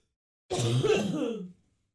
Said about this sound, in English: I'm just stuffy now, and I'm gonna hawk up a loogie.